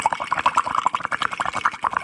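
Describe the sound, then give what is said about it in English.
Someone blows through a straw into water, making a steady stream of rapid bubbling and gurgling pops for about two seconds, with no talking. “It's blowing in a straw in water.”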